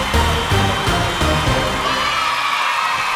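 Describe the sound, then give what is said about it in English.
A clapping and cheering sound effect: a dense wash of clapping and cheering from a crowd, steady and loud for about three seconds, with the lower, voice-like roar thinning out toward the end. “I've got some clouds here and some claps as well.”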